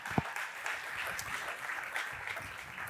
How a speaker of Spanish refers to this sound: Le damos la bienvenida a la gente que nos ve a través de las redes sociales, démosle un aplauso, a través de la televisión, a través de la radio.